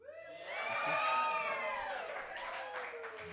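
An audience erupts in applause mixed with loud cheering and high whoops, applauding to vote for the contestant who explained it best in a game; a dense, sustained roar that swells and holds for a few seconds.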